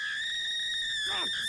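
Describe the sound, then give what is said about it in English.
A woman's short, high scream breaks out near the end and falls in pitch, over a steady, shrill ringing tone that runs throughout, as three men in dark robes tie her to a pyre to burn her at the stake. “Scream all you like, she-beast.”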